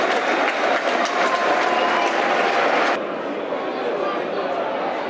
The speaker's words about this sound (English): No, there is a substitution. Mason Bennett's coming. That's a shame. Played well so far in his 25 minutes cameo, Tom Bradshaw. Good applause.